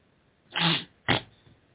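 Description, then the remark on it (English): A person sniffles twice, brought on by the changing weather: first a longer, breathy nasal rush, then a shorter, sharper burst, both fairly loud against a quiet background with no talking. “Pardon me, I have the sniffles as the weather changes, so that the contour and sensations in my nasal cavities and in my sinuses gives me the sniffles.”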